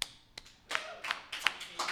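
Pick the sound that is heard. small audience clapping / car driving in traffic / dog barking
small audience clapping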